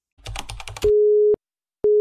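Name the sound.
telephone call connecting tone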